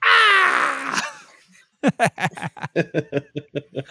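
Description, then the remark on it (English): A loud, high-pitched scream from the soundtrack of the movie Captain America: The Winter Soldier rings out for about a second and trails off, followed by a quick run of rhythmic, pulsing laughter. “And the soundtrack gives us one final scream.”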